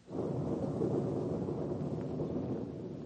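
A deep, sustained rumble of thunder rolls steadily for a few seconds, broad and heavy, with a windy hiss layered over the low roar and no voices present, as a storm approaches.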